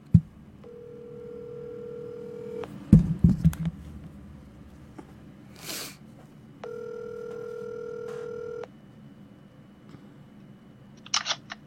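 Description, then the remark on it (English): A phone call to a man rings out on the line: two long, steady electronic ring tones separated by a pause, with a few handling clicks and taps in between. “And we're going to get him on the phone.”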